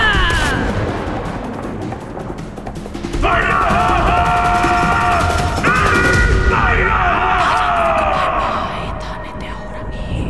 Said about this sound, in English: And Kohine can hear the words, but to everyone else, the sound is somewhere between thunder and a million branches snapping and their leaves rustling. The ground cracks all the way to the roots of the trees nearby.